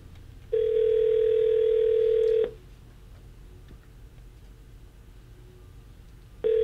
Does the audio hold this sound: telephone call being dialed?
yes